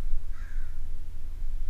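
A single short, harsh bird call rings out outside, over a steady low rumble of background hum. No one speaks.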